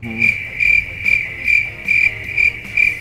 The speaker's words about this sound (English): It was the Mark Show. I get it? It's from Markstrom, but Mark Show. Crickets, please. Immediately.